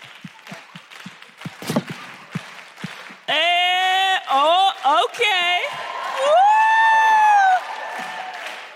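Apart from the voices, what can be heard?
audience clapping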